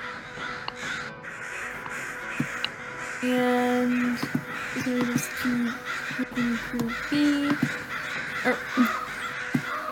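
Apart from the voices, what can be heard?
ravens cawing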